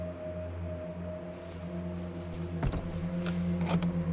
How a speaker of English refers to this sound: I pushed open the heavy door, the hinges groaning loud and slowly, not used to the movement.